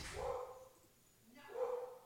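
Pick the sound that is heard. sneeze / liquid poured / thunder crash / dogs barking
dogs barking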